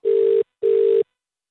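A telephone ringing tone on an outgoing call to a pizza restaurant: two short, evenly spaced buzzing bursts at a steady mid-low pitch, each under half a second, then silence. No voices.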